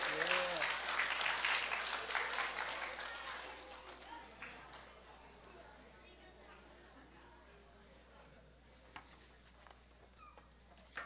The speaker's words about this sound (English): We can clap. Come on, people.